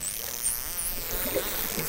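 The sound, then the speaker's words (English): Dolphins make rapid clicking and creaking pulses over a steady watery hiss, with a few thin high whistles gliding above. No one speaks. The sounds were recorded by a research team. “That's like, there's like a clicking, kind of creaking sound that they make.”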